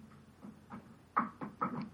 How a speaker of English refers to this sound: Is that knocking? No, I'm doing it with my finger.